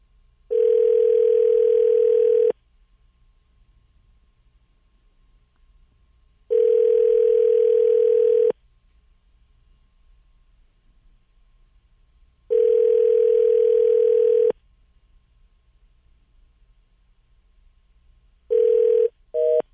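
A phone call to a woman on her day off, placed at 8:20 in the morning, rings out unanswered: steady two-second ringback tones repeat about every six seconds with silent gaps, clear, before a final ring is cut short and the line clicks.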